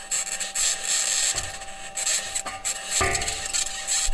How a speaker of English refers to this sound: That scratching is the sound of the wheels in contact with the surface of Mars.